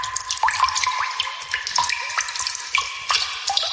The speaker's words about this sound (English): Then, at the end of the day, we went to the bar and we all ordered drinks. I said, can I get a pint of Guinness? And they poured it slowly as you could hear it leaving the tap.